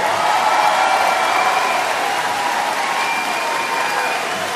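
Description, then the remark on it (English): A large audience applauds steadily after a speech, a dense, even wash of clapping that holds its level throughout and eases only slightly toward the end, with no distinct voices rising above it. “He's not even pretending to clap.”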